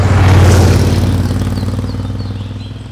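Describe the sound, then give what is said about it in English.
A motorbike carrying a man and a young girl hurtles through scenic Bohemian countryside in summer 1964, its engine roaring loudly at speed, a steady, throaty rumble that swells briefly near the start and then fades gradually, with no voices. “She's giddy with delight as their motorbike hurtles through scenic Bohemian countryside in the summer of 1964.”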